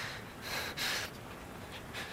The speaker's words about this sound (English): Okay. Good. Just keep breathing.